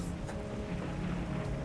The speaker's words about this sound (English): All you really hear is the rain as it starts to pick up. Nope. Just rumbly sky noise.